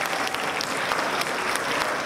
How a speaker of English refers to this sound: Kim Reed, can you stand, please, sir? Y'all give Kim a round of applause.